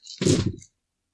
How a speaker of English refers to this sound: So, roll 9 dice against 2?